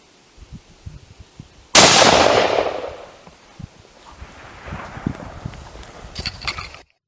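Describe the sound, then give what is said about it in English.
A single loud gunshot cracks out after a few quiet footsteps during a goat hunt on private property between Lithgow and Mudgee, its echo rolling away over a second or two, followed by soft shuffling and rustling outdoors. “So that was a goat hunt I went.”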